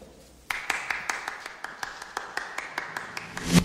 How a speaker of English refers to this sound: Jason Schwartzman's character, the one person clapping for that speech.